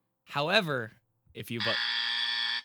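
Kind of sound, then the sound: signal or alarm, game show buzzer pressed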